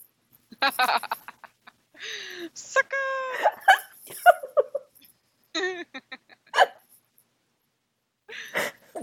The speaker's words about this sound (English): Oh, the hiccups.